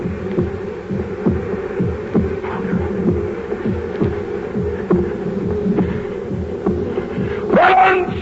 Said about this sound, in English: Tear up the planks. Here! Here! It is the beating of his hideous heart.